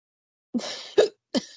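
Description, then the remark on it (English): Three abrupt hiccups in quick succession, each a sharp, gulping catch of breath with a short breathy tail, irregularly spaced and fairly loud, with no talking. “Oh my god, these hiccups need to go.”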